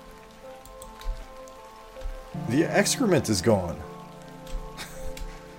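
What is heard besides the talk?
pouring rain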